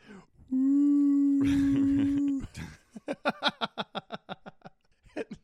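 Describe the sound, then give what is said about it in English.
A voice mimics a whale call, like the whale noises used to pull the Meg back towards base in the film, with one long, loud, steady low moan lasting about two seconds. A quick rhythmic burst of laughter follows. “They end up using whale noises to pull the Meg back towards base.”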